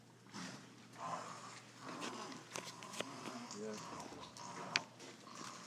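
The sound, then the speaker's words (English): An animal at an animal rehabilitation facility snores and snorts with rough, noisy breaths, fairly faint, while indistinct voices murmur in the background. “Someone's over there snoring.”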